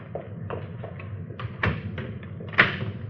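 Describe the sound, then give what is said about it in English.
A door is pulled shut, giving two solid thuds about a second apart, with a few lighter knocks and taps around them over a low background rumble. “Closing that so they won't know anybody's been here, huh?”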